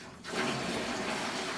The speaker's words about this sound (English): Okay, now, the gate's fully open, and a flow of about 290 second feet of water is going down the sluice, and none gets into the big ditch.